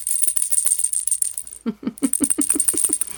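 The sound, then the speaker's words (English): A tiny lion rattle, made from the Swaddle Pals, Volume 1 pattern by Susan B. Anderson, is shaken in quick, steady bursts, its bright jingling clatter repeating about eight times near the end, with no voices. “No roaring, just a bit of rattling. In my hand, I am holding a tiny lion rattle.”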